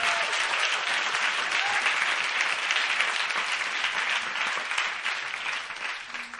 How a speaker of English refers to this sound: So let's just give a clap offering to how awesome God is.